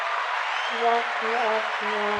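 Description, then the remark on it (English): A steady wash of applause from a crowd, an applause sound effect, dense clapping filling the whole clip at an even loudness, with a few faint tonal sounds drifting underneath. “applause”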